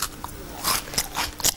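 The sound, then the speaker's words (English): A woman chews food loudly in a studio with a microphone held close to her mouth, with a handful of wet, crunchy bursts coming in an uneven rhythm. No one speaks. “can I ask you to eat less noisily? I'm not being rude, but if I hold my microphone close to your mouth, now chew.”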